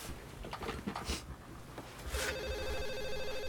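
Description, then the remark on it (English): After a second or two of scattered clatter and rustling, a telephone starts ringing, a steady electronic trill that carries on loudly to the end. “I just want someone to get that phone.”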